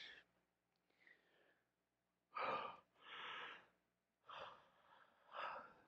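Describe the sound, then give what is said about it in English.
A person yawns, with long, breathy inhales and exhales coming in a few drawn-out, airy bursts; no talking. “Yawn in aisle 3, number 1 there.”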